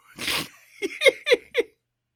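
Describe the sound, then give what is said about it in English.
A single sharp sneeze bursts out, followed by three or four short voiced huffs in quick succession before everything goes quiet. “Bless you.”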